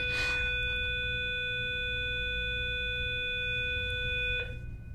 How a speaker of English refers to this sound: That was the bell.